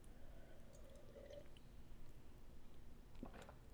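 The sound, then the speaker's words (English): Someone quietly drinks water: soft wet sips and swallows with faint liquid squishes, then a brief sharper click near the end, no one talking. “Pardon me, I need some water.”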